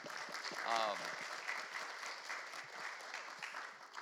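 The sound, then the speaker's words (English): An audience claps steadily throughout, a dense, continuous patter of many hands, with a brief voice rising over the applause early on. “First of all, let's applaud him because that's...”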